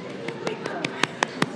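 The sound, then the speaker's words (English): Eight or nine sharp hand claps in a steady, fairly quick rhythm, the last few sounding louder, over a low murmur of voices in the background. “That's me clapping.”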